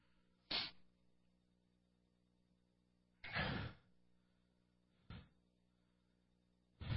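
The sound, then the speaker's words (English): A chair is handled and set down, giving four separate sharp knocking thumps spread across a few seconds, with quiet gaps between and no voices. “I need a chair. I need you to help me, elder. Give me a chair.”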